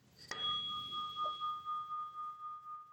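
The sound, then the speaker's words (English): A single strike of a brass bell from India rings out clearly, followed by a long, pure sustained tone that slowly fades while still lingering at the end. “And I've got my handy dandy bell here. So it's a beautiful bell.”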